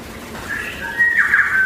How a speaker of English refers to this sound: Hello from New Zealand. You're hearing bell birds, tuis, chaffinch.